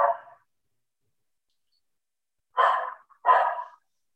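A dog barks three times, once at the start and then twice in quick succession after a pause of silence; the barks are fairly loud, with no one talking.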